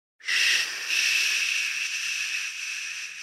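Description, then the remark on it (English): A voice makes one long, unbroken shushing hiss, bright and airy, starting abruptly and holding steady for about three seconds with a slight fade toward the end. No other sounds accompany it. “His last words were, what did the librarian and the snake both say to each other?”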